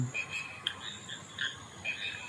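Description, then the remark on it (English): A chorus of Pobble Bonk frogs and motorbike frogs calling, with slender tree frogs also present, short repeated notes overlapping at an uneven rhythm, a plunking bonk mixed with a revving, engine-like call, over a steady background hiss. “Yeah, they're Pobble Bonks and motorbike frogs, like from season 1 of Noisy by Nature.”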